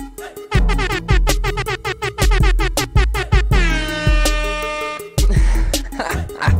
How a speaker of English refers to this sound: Hold on, hold on. Let me hit the air horn.